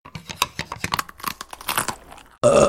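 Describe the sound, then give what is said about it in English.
Irregular crunchy chewing and tearing sounds of food being eaten during a meal, a quick uneven series of soft bites and rips, ending in a sudden loud burst of harsh, sustained noise. “Please, just eat your fill.”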